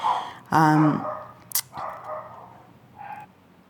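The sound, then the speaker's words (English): A dog lets out one loud, sharp bark, then a few softer, shorter yelps and whimpers trail off over the next few seconds. “I can just hear your dog.”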